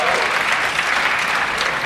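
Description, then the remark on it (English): An audience, asked whether they have heard of the Homo naledi discovery, claps steadily, a dense, even wash of many hands with no single claps standing out, holding at a fairly loud level throughout the brief moment. “Yeah, clap if you've heard of it.”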